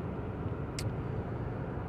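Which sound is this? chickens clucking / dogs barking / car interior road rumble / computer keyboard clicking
car interior road rumble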